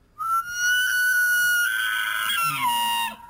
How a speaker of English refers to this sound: By the way, just quickly here, if you wanted to hear what a elk sound would sound like after, say, the Edmonton Elks, or Edmonton Elk, I should say, would get a touchdown, here it is.